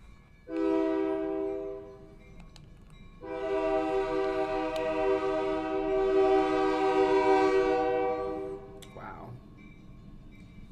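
A loud train horn sounds twice: a short blast, then a long sustained one lasting several seconds, over the low rumble of a passing train.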